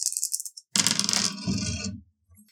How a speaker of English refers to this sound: I'm going to go ahead and roll now with 5 dice to see if I can get 2 successes.